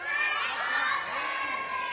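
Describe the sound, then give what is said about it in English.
An audience of children yells "Wake up, Harry!" together in one loud, sustained burst, many high voices blending into a bright, roaring shout that fills the whole two seconds. “So I'm going to count one, two, three, and you'll yell, wake up, Harry.”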